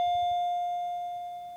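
A doorbell rings with a clear, sustained electronic tone that fades slowly over a second and a half, heard alone without any talking; the doorbell rang twice.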